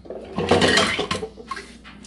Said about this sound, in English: So I'm washing the dishes so I can cook in an hour. I'm washing dishes. I just get some soap. Make sure it's clean.